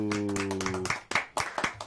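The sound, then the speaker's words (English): Quick, uneven hand claps, about a dozen sharp slaps. For the first half a steady humming musical tone plays under them, then the claps continue alone, fairly loud. “Still can't get the clap.”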